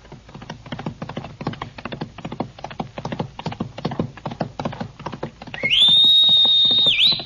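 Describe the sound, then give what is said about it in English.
A steady run of clip-clop hoofbeats gives way to a loud, shrill whistle that swoops upward, holds a high sustained note for over a second, then dips briefly at the end. “The hawk's whistle signals another exciting episode in the story of Hawk Larabee,”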